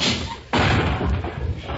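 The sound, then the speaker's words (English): A sudden loud crash of someone bursting in through a glass window, mistaking it for a glass door, a heavy impact followed by a second or so of noisy clattering debris, with no one speaking. “Glass door? Why, you just came in through the window.”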